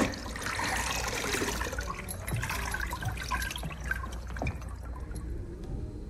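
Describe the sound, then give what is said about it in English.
Barefoot women mopping the black stage floor of a theatre: a steady wet swishing and sloshing of water, with a few brief knocks and scrapes along the way. Moderately loud and continuous throughout, with no one talking. “I'm just cleaning the stage for you tonight.”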